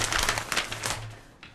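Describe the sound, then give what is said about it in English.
Dry, papery rustling and crinkling in quick bursts, like newspaper pages being handled and turned to look at the front page, with a faint low hum underneath and no talking. “Let's see what's on the front page of the paper that might have shocked him.”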